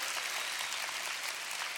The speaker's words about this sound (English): Come on, if you receive that, clap your hands this morning.